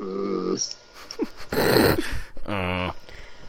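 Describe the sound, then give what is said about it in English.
A dog growls and snarls angrily in several short, harsh bursts with rough, throaty tones, fairly loud, with brief pauses between each outburst. “Sound like an angry dog over there.”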